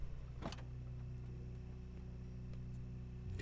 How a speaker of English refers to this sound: I don't know what it is with the cars. See, this is what confuses me. There's something going on outside with cars. I don't know who it is, if it's the grandmother, if it is what she's doing. But it sounds like there's two cars that are being moved.